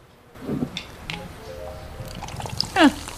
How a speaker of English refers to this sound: I never know what that sound means. I get that sound, and I... Some type of notification. It is, but I can't ever figure it out.